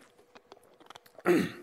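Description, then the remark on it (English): A few soft clicks and small mouth noises, then a short loud gulp and breathy swallow as someone drinks water, with no talking. “Excuse me, I'm actually going to take a drink of water really quick.”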